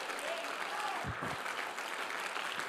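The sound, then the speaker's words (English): A large audience applauds steadily, a dense wash of clapping hands at full volume, with a few low thumps partway through and no clear speech. They clap to thank God for their pastor of 50 years. “That's why tonight you need to clap your hands and thank God for a man that loves you and has served you for 50 years.”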